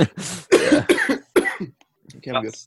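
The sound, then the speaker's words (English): A series of harsh, hacking coughs into the microphone, several loud bursts in quick succession followed by a brief pause and a final rougher, throaty cough. “You need to cough into the mic. It's called a hacking cough”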